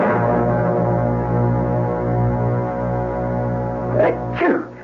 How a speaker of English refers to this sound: I heard you sneezing.